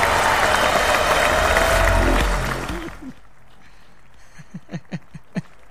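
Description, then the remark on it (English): A brief burst of dense applause that lasts a couple of seconds, then quickly dies away, leaving a few faint spoken syllables afterward. “A very short applause indeed because of the Los Angeles Lakers and who they are as a whole.”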